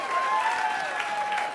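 An audience claps steadily to welcome a speaker as she makes her way up to the stage, a dense, continuous wash of applause that holds an even loudness throughout, with a faint sustained tone running underneath.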